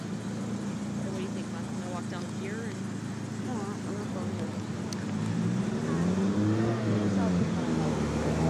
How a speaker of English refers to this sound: So crazy, DeLorean just passed by. Incredible. A lot of interesting cars out here, by the way.